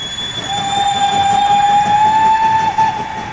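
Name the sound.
train running on rails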